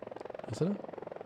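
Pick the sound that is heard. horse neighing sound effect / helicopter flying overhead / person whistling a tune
helicopter flying overhead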